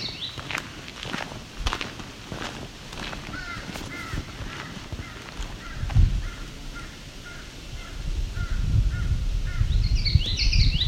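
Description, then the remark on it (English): A crow caws repeatedly in a steady series while footsteps crunch and a low outdoor rumble builds toward the end. “That's another crow.”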